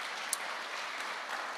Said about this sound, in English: Yes, go ahead, clap for Jesus if you're clapping.